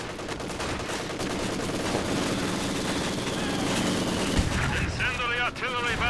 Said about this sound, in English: Incendiary artillery is now available. Really? I have incendiary artillery.